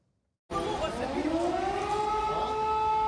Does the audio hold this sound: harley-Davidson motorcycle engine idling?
no